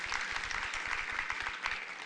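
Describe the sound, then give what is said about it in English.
A short burst of audience applause: many hands clapping in a dense, steady patter of crisp claps that holds at an even, moderate level for about two seconds, with no voices. “Yeah, we can give a little round of applause to that.”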